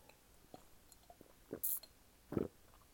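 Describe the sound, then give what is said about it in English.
A sip from a drink: faint lip clicks, a short bright slurp, then a louder swallowing gulp near the end, with no talking. “Let me take a sip.”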